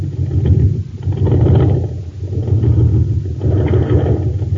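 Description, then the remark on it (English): A jet boat engine at an aqua jet boat race on Mars runs with a loud, low, throaty rumble that swells and eases in slow surges about every two seconds, with no voices. “Gang, this is Captain Dick Tufeld at an aqua jet boat race on Mars.”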